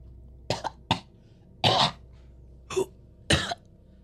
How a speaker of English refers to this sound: Stands up, right as there's this coughing, cut to the establishing shot. Water is just coming out of his mouth as he coughs it up.